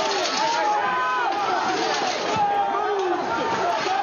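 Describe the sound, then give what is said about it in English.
A rioting crowd breaks through a barrier outside the Capitol, knocking a police officer to the ground, with many voices shouting and yelling over one another in a dense, chaotic roar that stays loud and unbroken throughout. “That sound from a video showing her being knocked to the ground by rioters who broke through a barrier outside the Capitol.”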